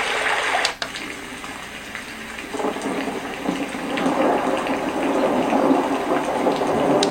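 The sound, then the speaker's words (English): Steady rain falling, a dense, continuous hiss that fills the scene without pause, fairly loud, with a brief dip near the start and no voices. “Just rain. It's rain. White noise.”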